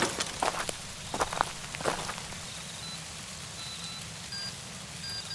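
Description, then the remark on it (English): Steady rain falls and patters on surfaces, with a few sharper drips and taps early on over a low continuous hiss. “Man, this stupid bike and this stupid rain.”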